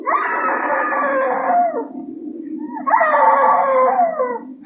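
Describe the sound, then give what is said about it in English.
A woman screams twice in long, wavering, wailing cries that sound muffled, with a short pause between them and a low rumble underneath. “Dad, she's screaming again.”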